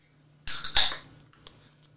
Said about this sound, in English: Sorry, sneezed. Interesting sneeze.